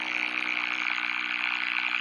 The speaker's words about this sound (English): That's our foghorn Trump.